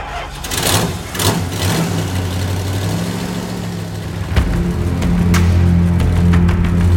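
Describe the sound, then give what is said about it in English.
A truck engine rumbles steadily, its low drone rising in pitch in stages as the vehicle pulls away and accelerates, with no voices. “I walked back to the truck of death. And I headed back to the madhouse.”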